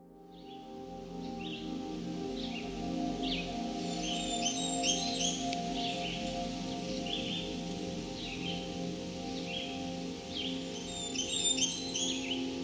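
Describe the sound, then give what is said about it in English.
A male Blackburnian warbler sings rapid, high, thin, buzzy phrases, with two more prominent bursts several seconds apart among scattered softer notes, all over a steady low rumble of outdoor background noise. “The Blackburnian warbler is a small, brightly colored warbler found high in the canopy of mixed forests in parts of eastern North America.”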